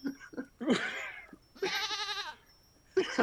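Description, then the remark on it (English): A person does a goat impression, letting out several wavering, nasal bleats in quick succession, with one long quavering cry in the middle and a short one at the end, fairly loud. “Do you guys want a goat? Because I can make a goat.”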